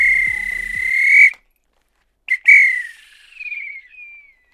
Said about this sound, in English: If this were a real bit of extra time, this is when the ref would blow the whistle because it's finished.